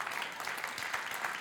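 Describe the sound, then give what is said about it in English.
Steady applause from an audience, a dense patter of many hands clapping at an even level throughout, with no voices breaking through. “You know, and let's applaud Sandra.”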